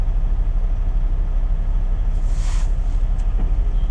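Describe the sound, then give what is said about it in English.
A heavy snow plow truck rumbles by on an icy roadway with a constant low engine drone, and a brief hissing, scraping burst rises midway before settling back into the steady roar. “I gotta get some sounds of the plow truck when he goes by.”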